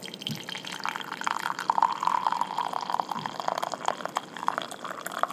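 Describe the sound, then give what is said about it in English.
Black tea with lavender and bergamot essence is poured into a cup, a steady trickle with bright splashing and a rising, filling gurgle that runs for several seconds without any talking. “Here are the ingredients, though. Black tea's natural flavors, lavender, and bergamot essence. So we'll get a little pour and taste.”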